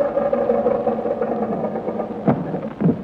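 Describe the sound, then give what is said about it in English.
A steady, droning propeller-aeroplane engine hums with a low, sustained tone, then gives two brief louder bursts near the end as it descends to land in a backyard. “Now let's take her down and tell the world we invented the aeroplane.”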